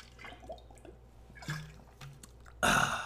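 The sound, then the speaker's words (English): A person takes a quick sip of water: soft wet mouth clicks and slurping, then a louder, breathy rush near the end. No one speaks. “Moving on to tight ends after a quick sip of water.”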